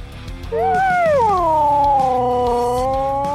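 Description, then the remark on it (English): A Siberian husky lets out a long, loud howl that rises, wavers and slowly glides down, sustained for about three seconds with a faint background murmur. “Huskies are the strong, silent type, but boy, can they howl.”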